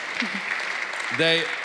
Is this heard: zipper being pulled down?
no